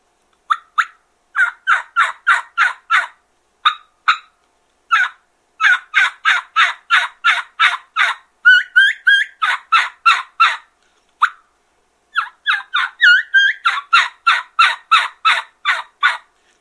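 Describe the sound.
Hen turkey yelps produced on a V-cut diaphragm call, coming in rapid, rhythmic runs of sharp, raspy notes with short pauses between bursts, loud, with no talking.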